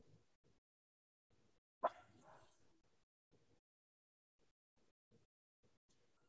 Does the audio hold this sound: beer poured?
no